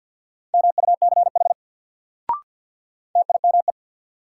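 Rapid Morse code beeps at 50 words per minute, sending words in one steady mid-high tone, keyed in two quick bursts of dots and dashes separated by a pause, with a brief click in the gap.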